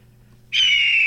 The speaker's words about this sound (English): Play the hawk. The hawk is the new one.